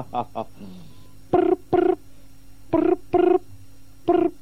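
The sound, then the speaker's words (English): A voice imitates a telephone ringing, producing paired buzzy tones in a repeating double-ring rhythm, three pairs in a row, fairly loud, after a couple of brief vocal sounds. “Stop making that stupid sound with your mouth”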